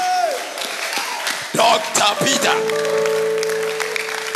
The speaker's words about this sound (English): Clap for the pastor.